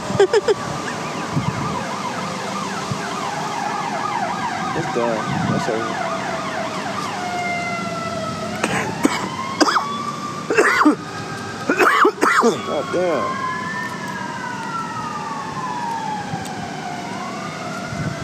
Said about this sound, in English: That sound like an ambulance or a fire truck. It do.